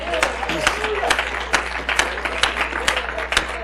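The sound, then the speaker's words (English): An audience gives God a hand clap of praise during a sermon, with sharp, fairly regular claps over a steady crowd murmur and some voices, at moderate loudness. “Give Him a hand clap of praise.”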